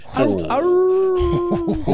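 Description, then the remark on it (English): A dog lets out a whimpering whine that stretches into a long, steady howl lasting over a second, with a person's voice murmuring underneath toward the end. “It's a dog situation over here.”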